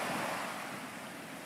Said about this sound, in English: See the calm water lapping the shore once more. And as you gaze upon all the beautiful blue colors and the white surf where the water touches the sand